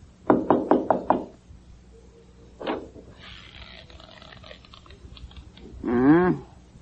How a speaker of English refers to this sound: Well, go ahead, knock.